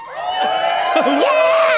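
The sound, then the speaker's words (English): A crowd cheers loudly, a dense wash of many voices whooping and shouting, with high, swooping yells rising above the roar for a couple of seconds. “Let's cheer for my big, big boner.”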